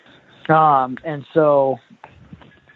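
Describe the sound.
Two drawn-out, nasal moaning calls in quick succession, a human voice imitating a cow moose, made from a hunting camp at night before bed, loud, followed by faint breathy sounds and quiet background.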